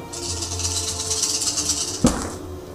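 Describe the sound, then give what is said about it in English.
Dice rattle steadily across a table for about two seconds with a bright, clattering texture, ending in one sharp knock as they come to rest, one landing on top of another die. “It's on top of another dice.”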